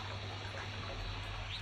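Water pours steadily from a tap into a bathtub, a constant rushing hiss with no pauses, moderately loud, with no talking over it.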